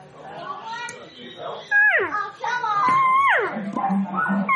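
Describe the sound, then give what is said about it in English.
A diaphragm call imitates a cow elk, giving whiny, nasal mews that start high and slide downward. Two loud, drawn-out calls follow some softer, lower calling at the start. “Sometimes getting called from different makers, like, okay, so listen, I'm going to give you one here. And just a cow call, listen to them.”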